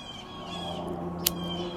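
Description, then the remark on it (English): Birds and other animals calling together outdoors in the morning, a steady layered chorus of tonal cries, with one brief sharp click partway through. “I love that sound in the morning. Birds, animals acting a fool, like, get the hell up, it's Sunday, yo.”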